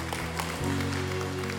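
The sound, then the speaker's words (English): A crowd applauds with a dense, steady patter of clapping while sustained keyboard chords hold underneath, shifting to a new chord partway through. Everyone is standing and applauding those who raised their hands that morning. “And can we give a round of applause for those who raised their hand this morning again?”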